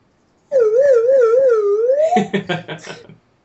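A slide whistle warbles up and down in a steady wobbling tone for over a second, then sweeps upward into a quick run of choppy, sputtering notes before stopping.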